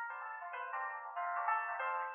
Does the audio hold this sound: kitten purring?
no